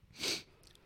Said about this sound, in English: I'm going to sneeze. Hang on.